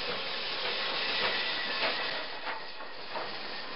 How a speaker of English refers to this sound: With a loud hiss, the train came to a stop at the Illinois Central Passenger Depot in Dubuque.